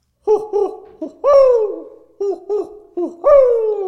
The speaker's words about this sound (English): That owl dives lower every time. You're teaching it things, aren't you?